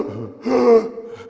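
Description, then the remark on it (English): A voice imitates the gasping for air of a dying, barely conscious man: one sharp, breathy intake that swells and then fades, fairly loud, with a short catch of breath starting again at the end. “As a matter of fact, I went in that room and he was gasping for air while he was a little unconscious.”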